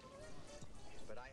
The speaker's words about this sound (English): Yeah, lead the bottle. Just pour it in. Yeah, man. Just get that lemonade in there. Oh, yeah.